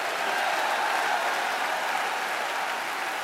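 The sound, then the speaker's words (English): An audience claps their hands in a dense, continuous wash of applause that stays steady and fairly loud throughout, with no voices standing out above it. “Clap your hands and shout with a loud voice.”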